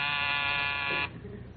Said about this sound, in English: There's the door buzzing. Right in the most interesting part.